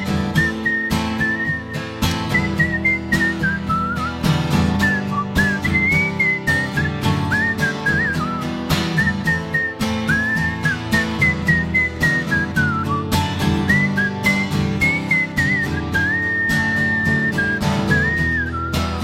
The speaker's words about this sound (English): Now he just sits in his room all day, whistling every note he ever played.